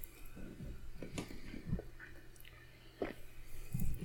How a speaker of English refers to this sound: Totally I'm chewing that. Away from the microphone.